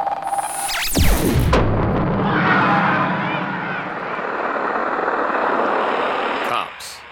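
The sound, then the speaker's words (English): A charged sci-fi cannon is fired: a sharp electronic zap sweeps rapidly downward in pitch, then bursts into a loud, sustained roaring rumble that holds for several seconds before cutting off. “The blast has knocked out communications.”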